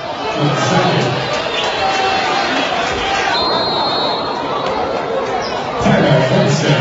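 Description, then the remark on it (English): A basketball crowd reacts with displeasure to a foul called after a battle for a rebound, with a loud, steady wash of murmuring and restless chatter that swells slightly near the end, with a brief thin high tone in the middle. “The crowd doesn't like it, and indeed it's going to be the second foul charged against Brody Bolin.”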